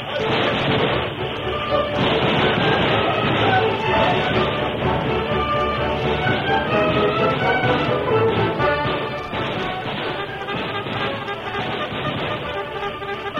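A train rumbles steadily along the rails, loud, its continuous clatter filling the whole stretch with a dense, busy mix of other noise layered on top.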